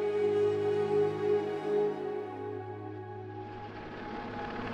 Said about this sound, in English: The helicopters have been flying overhead for hours, trying desperately to winch people out of the sea to safety.